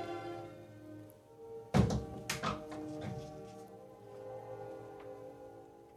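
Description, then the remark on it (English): A door thuds shut with one solid low thunk, followed by a few softer knocks and rattles as it settles, all over a steady quiet hum with no talking. “That's what I was thinking when I finally closed the door.”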